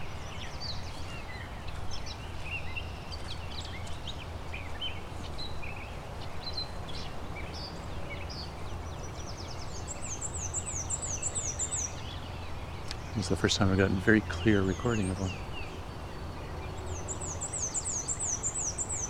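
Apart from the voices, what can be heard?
black-and-white warbler song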